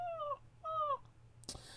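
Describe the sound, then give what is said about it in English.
A voice imitates an upset puppy's whimpering scream, like a horror-film victim's scream: two short, high, wavering whines, each slightly falling in pitch, followed by a brief breathy noise at the end. “Kind of like a upset puppy, you know, the scream.”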